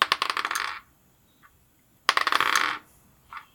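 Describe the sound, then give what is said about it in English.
Dice clatter and tumble across a hard surface in two separate rolls, each a quick rattling burst of clicks that ends with a faint final tap, fairly loud. “I rolled the dice, but now I don't remember what the numbers said. So I'm going to have to do it again.”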